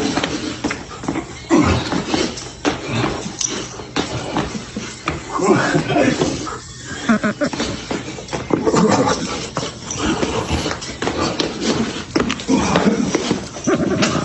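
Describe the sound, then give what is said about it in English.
A dog whimpers and whines with panting and shuffling movement throughout, sounding slightly muffled and thin as if played back from a video, with faint voices mixed in. “the dog seemed to like it. At one point, yes, but at one point there is a flinch.”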